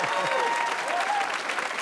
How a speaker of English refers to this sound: Thank you. Thank you for applauding my breakdown.